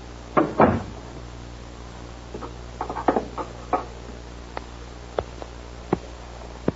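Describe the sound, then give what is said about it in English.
A cigarette lighter is flicked again and again without catching, a run of sharp clicks at uneven intervals after an opening rattle, with quiet pauses between tries and no voices. “They never work, these lighters. Never the first time.”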